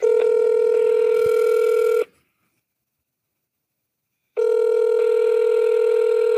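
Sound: telephone dialing and ringing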